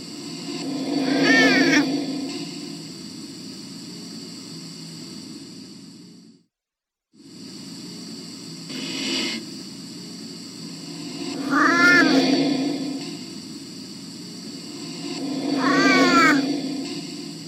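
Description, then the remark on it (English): A cat meows three times with long pauses between calls, each a drawn-out, wavering cry over a steady background hiss and hum, with a brief dropout to silence midway. It is from a YouTube video said to show contact with the late Grumpy Cat. “Huff posted a video on his YouTube channel that appears to show that he made contact with Grumpy Cat from the other side.”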